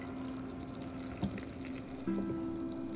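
Nescafe coffee pours steadily into a coffee mug, a continuous liquid trickle with a faint rising tone as the cup fills, plus a brief clink partway through; fairly quiet, with no talking.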